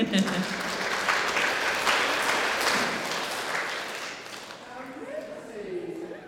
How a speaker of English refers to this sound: So if you could come up and receive our cards that we made for you, that would be wonderful. And I think we need to do our clap for him, right?